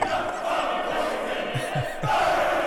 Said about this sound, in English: It's very simply a choir with 30 guys that don't sing a note. Instead of that, they shout and bellow and scream and cry and do everything that one can do with a loud voice.